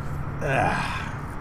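A single sneeze: a sharp, breathy vocal burst peaking midway through, with a brief rising and falling tone, over a steady low background hum.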